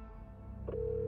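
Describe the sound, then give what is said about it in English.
A phone call being placed: after a low background hum, a short electronic blip leads into a steady telephone tone that holds to the end. No one speaks. “The group got Lachinos on the phone.”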